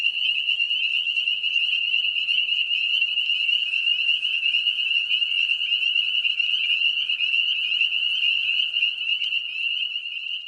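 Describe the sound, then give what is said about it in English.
A dense chorus of frogs calling, a continuous high-pitched trilling that holds steady and loud for the whole stretch, with no voices or other sounds. “So I'm going to play that sound for you because it's really a cute little sound they make.”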